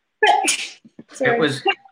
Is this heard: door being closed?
no